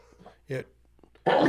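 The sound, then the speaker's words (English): A man's sneeze: a short voiced intake followed by a loud, sharp, breathy burst at the end, after a quiet stretch with faint murmuring. “Excuse me. Bless you, my man.”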